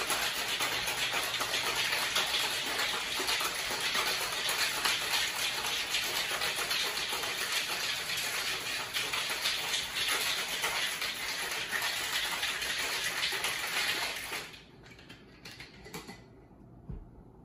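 Ice rattles hard inside a cocktail shaker holding 3 ounces of black tea, blueberries and a few ice cubes, shaken for about 30 seconds in a fast, steady, continuous churn, loud and hissy throughout, then stops abruptly near the end, leaving near silence. No one speaks.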